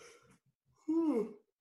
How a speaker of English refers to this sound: You have a big yawn.